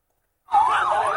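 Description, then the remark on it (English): After a brief silence, an ambulance siren suddenly starts wailing loud, its tone sweeping up and down in a steady, urgent cycle, at Gaza's Jabalia refugee camp as wounded children are rushed to ambulances after an airstrike. “Wounded children rushed to nearby ambulances.”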